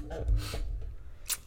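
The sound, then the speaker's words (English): A single sharp sneeze bursts out, followed by a short breathy hiss, with a low rumbling hum underneath. “Bless you.”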